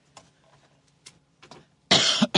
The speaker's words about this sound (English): I'm using a different mic, so I have to be careful where I cough.